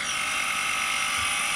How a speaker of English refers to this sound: This is the sound that has been occurring, because they've been working on the wall right outside of my window.